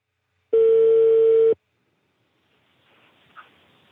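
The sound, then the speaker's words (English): A loud, steady phone ringing tone from a repeated call-back attempt sounds once for about a second and then cuts off abruptly, leaving near silence and a faint hiss on the line. “So after several attempts, part of the way through ringing, it stops.”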